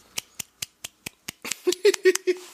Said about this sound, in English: So, you get a little golf clap.